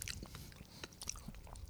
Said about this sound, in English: This motherfucker's just like munching away.